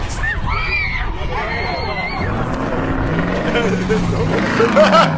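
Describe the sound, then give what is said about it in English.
A truck rumbles past on a busy street, its low engine drone rising and falling steadily, while background chatter from people and higher whining tones mix into the noisy outdoor ambience. “That was a truck.”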